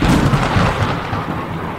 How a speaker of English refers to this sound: And with that, Zeus sent down a storm of lightning, killing Salmonius immediately and wiping his kingdom off the earth entirely.